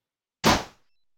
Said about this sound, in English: I'll knock on the door, shall I? You knock on the door and I will let you in.